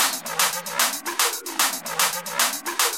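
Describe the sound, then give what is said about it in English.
A fast, steady hi-hat loop ticks away with sharp, bright claps layered on top, forming a tight, repeating percussive rhythm with no voices, the start of a hardstyle tune being built. “Now, add some claps.”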